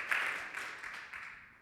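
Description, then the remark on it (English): An audience at a worship service applauds the morning's worship leading in a steady, dense wash of clapping that gradually fades over about a second and a half, with no voices over it. “So a big round of applause for that.”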